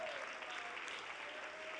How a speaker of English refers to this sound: This is the day that the Lord hath made. Oh, clap your hands and give the Lord some praise tonight.